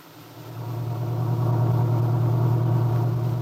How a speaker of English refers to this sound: Aunt Mary Lane and her old friend and helper, Lefty Larkin, were driving into Wakefield in the little pickup truck.